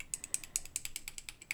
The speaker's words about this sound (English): Throw that away and add the same amount of water. There we are. Stir it around with a paintbrush.